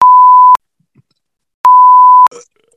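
censor bleep tone

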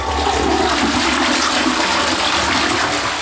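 toilet flushing

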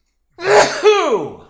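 loud sneeze

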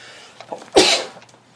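sneeze

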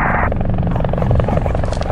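helicopter flying overhead

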